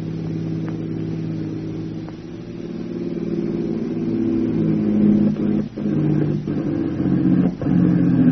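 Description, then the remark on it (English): A car engine drones steadily as the car reaches the crest of a high hill, then begins to sputter as it runs out of gasoline, its hum breaking into several brief stutters and dropouts near the end as it falters. No voices are heard. “As they reached the crest of a high hill, their gasoline gave out, and a Jap staff car opened fire on them.”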